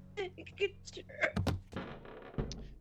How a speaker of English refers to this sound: The door is locked! Burst it open!